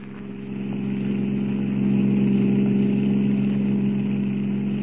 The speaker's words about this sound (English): Looks like we lost the car that was following us, Jack. Yeah, I figured we would. We're doing 90.